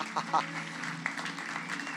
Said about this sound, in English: I just want us to give him a clap. Let's just give the Lord a clap.